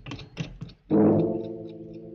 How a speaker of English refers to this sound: Putting down the phone, Ernie turns, picks the pillow off his bed as the clock finishes striking 12.